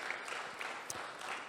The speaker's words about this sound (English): But before I do so, I just want to take a moment to thank all those who came out this past week for our week of prayer. It was so special. Yes, you can clap for that.